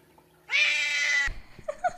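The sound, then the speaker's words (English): A cat lets out one loud, drawn-out, oddly strained meow, then a couple of softer, short chirping mews trail after it. “But, like, people's cats make some fucking whack noises that I have not experienced.”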